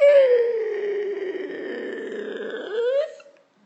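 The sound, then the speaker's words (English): A voice imitates a large wooden castle door creaking open on unoiled hinges: one long, loud, groaning creak that sags lower in pitch, then rises and cuts off after about three seconds. “Don't ask me why they didn't use oil on their doors, but they didn't.”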